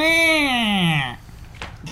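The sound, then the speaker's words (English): A person imitates a cat's mating yowl: one loud, drawn-out nasal wail lasting about a second that slides steadily downward in pitch, then trails off into faint breathy noise. “A horny cat is like the most unattractive sound on the planet.”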